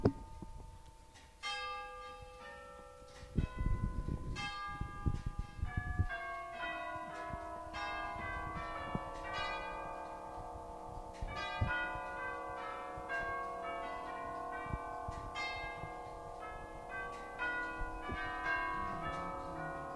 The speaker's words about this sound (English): I'm going to stop here, listen to these clocks for a moment.